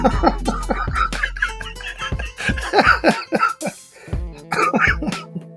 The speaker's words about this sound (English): All right. Before you cough a lung up, why don't you tell them what they need to know?